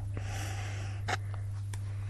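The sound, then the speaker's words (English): A few short sniffs as a person smells a yellowy-brown powder to guess what it is, with one stronger breath in the middle, spaced irregularly over a steady low electrical hum, with no talking. “Do you want another smell,”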